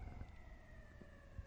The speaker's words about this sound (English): But yo, that police siren tells me it's time for us. You know we're in Brooklyn. That police siren.